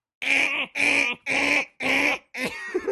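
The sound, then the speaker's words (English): A voice imitates a loud backup wake-up alarm, one usually snoozed twice: four harsh, nasal, evenly spaced blasts in a steady rhythm, followed by a fifth, shakier sound that trails off. “Now, my backup alarm, I usually hit snooze on that one twice, right? My backup alarm goes.”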